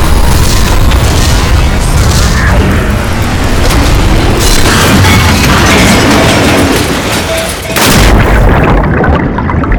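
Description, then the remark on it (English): A massive explosive boom from an emergency X-Core jettison swells into a long, roaring rumble, loud, filling the whole stretch with crackling debris-like noise before a brief dip and a final surge. “Warning, emergency X-Core jettison in 5, 4, 3, 2, 1, ejection.”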